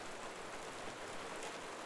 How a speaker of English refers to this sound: As you listen to the rain, just sit in his presence, watching the rain fall.